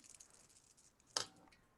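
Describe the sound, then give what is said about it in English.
A single short clatter of dice rolling, like a brief hard rattle across a surface, standing out against a quiet background with a few faint ticks before it. “I don't like that Jason just rolled dice.”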